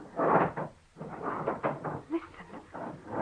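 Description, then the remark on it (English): Heavy thuds, scrapes and wooden knocks repeat for a few seconds as a man barricades a door, with furniture dragged and shoved against it. “You hear what he's doing? Barricading the door.”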